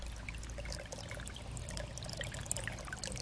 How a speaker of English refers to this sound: Can you hear the trickle of water? Just a slow kind of calming and meditative flow